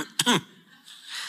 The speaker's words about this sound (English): now you're all coughing.